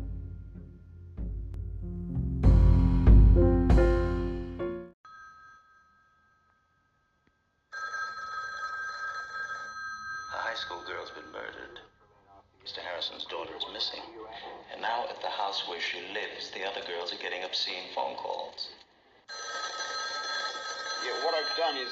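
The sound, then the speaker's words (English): After a short burst of loud music, a telephone rings in long, repeated bursts of bright, steady tone, prominent, with brief pauses between rings and faint voices underneath. “Your phone's ringing.”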